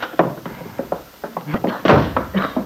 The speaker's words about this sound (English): And at that moment at the Lane farm, Lefty Larkin burst through the kitchen door.